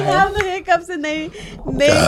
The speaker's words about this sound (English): The way you've been burping.